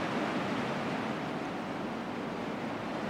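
ocean waves

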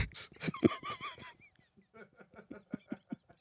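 bird squawking

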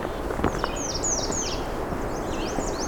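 black-and-white warbler singing

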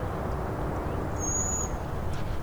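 field sparrow song

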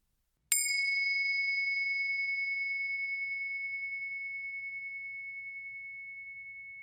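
meditation bell ringing

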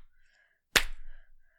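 slow hand clap

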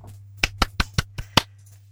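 applause

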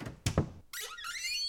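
bedroom door opening

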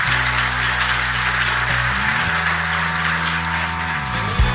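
round of applause

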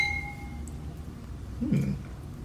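wine glasses clinking

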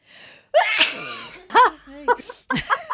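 loud human sneeze

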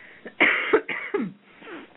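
cough

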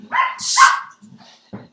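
dog barking

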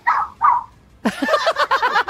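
dog barking

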